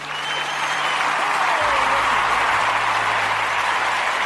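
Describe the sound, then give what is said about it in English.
A crowd applause sound effect: a dense, steady wash of many hands clapping at an even loudness throughout, with no voices standing out. “Listen to the crowd.”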